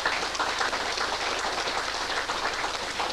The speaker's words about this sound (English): One last round of applause for Lauren Lurkins.